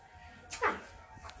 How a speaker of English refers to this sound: Like, Lonnie! You cute little dog.